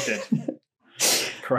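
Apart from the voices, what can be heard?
sneeze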